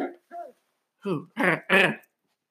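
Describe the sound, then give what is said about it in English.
A dog makes a series of five short, throaty vocal noises: two quick soft ones, a pause, then three louder, longer grumbling bursts in a row. “You can hear the dog.”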